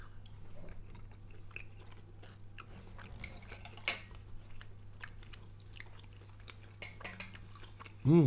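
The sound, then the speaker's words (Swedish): A fork clinks and scrapes lightly against a plate at irregular moments while grilled chicken dipped in bean sauce is eaten, with one sharper ringing clink midway, amid soft chewing sounds over a steady low hum. A short vocal sound comes at the end. “Du har en gaffel där.”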